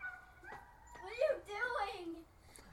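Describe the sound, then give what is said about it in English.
A dog whines and yips outdoors in the sunshine, a few sliding high-pitched cries strung together over a couple of seconds, fairly quiet overall with a faint outdoor background. “The dogs around with you?”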